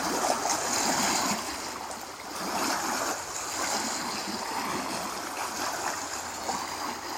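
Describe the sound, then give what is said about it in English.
Water moves steadily, with a continuous watery wash and small splashing textures, gentle ripples lapping at the edge of a lake. No voices are heard. “The sound of water from the lake, echoing the sound of the waters moving through our internal landscape.”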